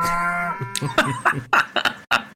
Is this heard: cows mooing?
yes